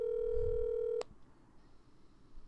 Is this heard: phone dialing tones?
yes